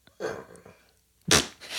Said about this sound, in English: Did he burp? Yeah, he did. That was good. That was a good one.